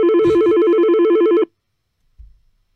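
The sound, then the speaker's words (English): A loud electronic telephone ring warbles rapidly for about a second and a half as a Liverpool fan calls in to the Fan Park Live show, then cuts off abruptly, followed by a faint low thump after a brief silence. “We've got another Liverpool fan on the phone.”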